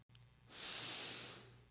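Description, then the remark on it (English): A single slow breath drawn through the nose, a soft airy hiss that swells and then fades over about a second, heard alone with a faint low hum underneath. “When you're feeling stressed, just take a moment and breathe in and out 5 times in your nose.”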